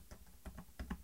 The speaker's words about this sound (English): When Kate was typing the numbers into the computer, you can only hear roughly 6 to 8 clicks like this.